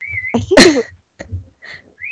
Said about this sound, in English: I am being whistled at currently. Yeah, I hear that.